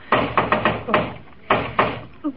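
Mr. Scrooge knocks on the Cratchits' door, first a quick run of about five raps, then a pause and two more spaced-out knocks, fairly loud.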